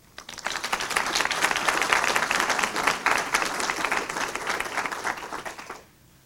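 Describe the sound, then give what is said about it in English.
A crowd breaks into sustained applause for the speakers, participants and program partners, a dense wash of many hands clapping that swells quickly, holds steady and loud for several seconds, then tapers off and stops abruptly. “So I'd like to give one more round of applause, both to these speakers, but also to the participants and program partners that are making this possible”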